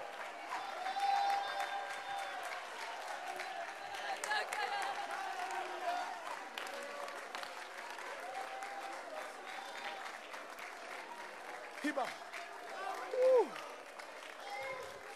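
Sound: audience applauding and clapping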